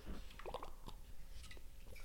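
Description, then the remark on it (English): Someone takes a few quick gulps of water from a bottle, with soft wet swallowing and squishy liquid sounds in a short, quiet sequence. “You already know, my queen, if you haven't, or even if you have, I want you to grab your water bottle with me, and we're gonna hydrate your hot bods in 3, 2, 1.”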